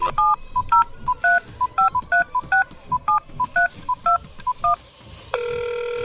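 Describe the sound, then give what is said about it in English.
A quick run of touch-tone phone keypad beeps, about a dozen short dual-tone presses in steady rhythm, followed by a sustained ringback tone as the call connects, clear with a faint background hum; the call is to Brock's, answered by the Ferrara Candy Company line. “Well, we're going to call Brock's and find out what happened.”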